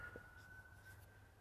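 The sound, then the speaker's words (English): An ambulance siren sounds, a steady, thin wailing tone held throughout over a low background rumble. No one speaks. “ambulance blasting.”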